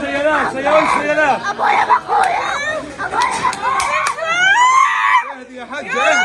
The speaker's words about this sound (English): Now you have this little girl screaming.